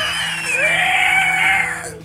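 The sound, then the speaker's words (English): A voice lets out a sustained, wavering, high-pitched scream of anguish lasting about two seconds, loud, imitating a creature's agonized cry. “Horrible screams. Screams of anguish.”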